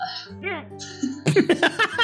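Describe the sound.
Odd, squeaky hiccup noises from a person rise and fall, then a quick run of short, clipped voiced bursts follows, fairly loud.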